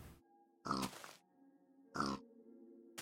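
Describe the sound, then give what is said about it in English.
A pig grunts twice, short rough snorts spaced about a second apart, fairly loud, over a steady low droning hum in the background. “Get that pig! Murder it!”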